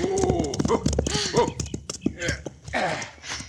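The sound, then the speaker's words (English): The hooves of two riders' horses, one named Aguila, pound at a gallop across green countryside, then ease into a slower, irregular beat, with vocal calls and voices layered over the thudding. “As our story opens, this house is the destination of two riders whose swift steeds pound a furious pattern across the verdant countryside.”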